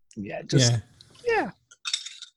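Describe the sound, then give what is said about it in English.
A short voiced murmur gives way to a quick cluster of light, crisp plastic clicks and rattles, bright and snappy: the door of a Billet Box vape being whipped off and clicked back on. “But if I've got it out of the leather case, I'm constantly whipping the door off and clicking it back on. And all you'd hear is, I'm sure you can hear in the background.”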